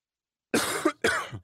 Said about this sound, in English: So that's my COVID cough, just so you know. I'll just do that for impact.